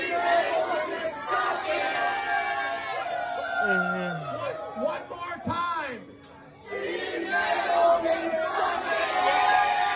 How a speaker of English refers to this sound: That's the enormous crowd of the Rumble Seat on Saturday for the Rock 102 Halloween Celebration